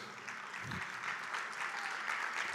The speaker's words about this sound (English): I love it when I get like a 10% clap just because it's just like, ouch, please get off my toes,